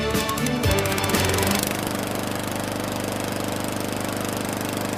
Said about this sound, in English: Here's today's song. You've got to tell us the words that are missing. So you need to sing the song in your head and keep singing for the lawnmower bit.